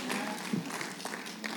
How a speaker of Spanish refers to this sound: Démosle un aplauso